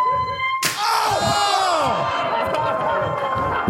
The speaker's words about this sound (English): A chest slap